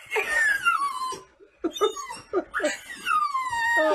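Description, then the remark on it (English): A dog named Sadie howls, two long, wavering howls that slide downward in pitch, broken in the middle by a few short, yelping cries. No one speaks. “It's pretty surprising for Sadie to howl like that because she doesn't really actually do that very often, and she really only does that for Rolo.”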